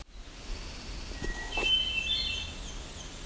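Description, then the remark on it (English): An American Redstart sings once: a thin, high-pitched phrase of sibilant notes over steady outdoor background noise, with a couple of faint clicks just before it. “So this American Red Start was singing.”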